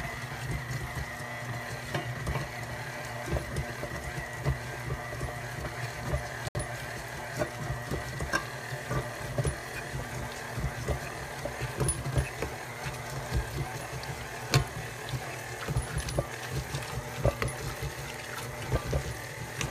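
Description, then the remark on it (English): An electric mixer whirs steadily on a low setting for the whole stretch while a warm mixture is poured into pre-mixed cookie dough, a continuous motor hum with faint irregular ticks and scrapes from the bowl, and no one talking. “So we're gonna turn this bad boy on and then just pour it in with a slow mix.”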